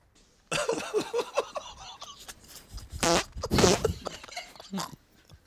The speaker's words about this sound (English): Okay, so that was number one. Here's mystery fart number two.